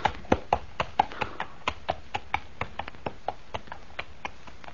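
Steady clip-clop of horse hooves at a walking pace, a string of sharp, evenly spaced knocks that grow slightly fainter as the horse is led away to the stable, with no voices.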